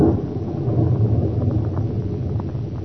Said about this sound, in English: Good heavens, that lightning must have hit quite near here.